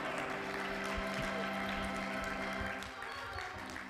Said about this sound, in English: Clap your hands in the house.